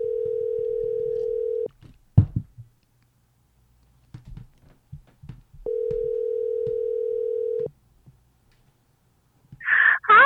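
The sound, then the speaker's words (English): A steady telephone dial tone drones for a couple of seconds as a call to a friend is being placed, gives way to a few clicks and faint shuffling, then returns for another two seconds before a brighter burst of sound at the end. “I would love to use our phone a friend. And I think you know who I want to call.”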